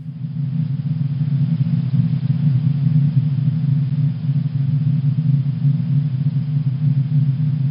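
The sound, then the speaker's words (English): Sonified vibration modes of the sun, several modes heard together: a steady, dense low rumble of many overlapping tones, droning continuously at an even loudness with no speech. “But this is what we hear when we listen to several modes together.”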